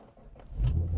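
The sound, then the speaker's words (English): A manual-transmission (stick shift) car engine starts: quiet at first, then a deep, loud rumble swells up halfway through and keeps idling roughly, with no voices. “See, that doesn't sound like my car when it starts.”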